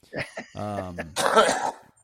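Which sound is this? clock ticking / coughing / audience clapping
coughing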